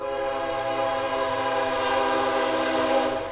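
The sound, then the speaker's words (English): A train horn blares in one long, steady, loud blast that fills the whole moment, with the low rumble of the passing train underneath and no voices. “And that's how you know that you are back on track with Alan Zach, if you hear the train going by.”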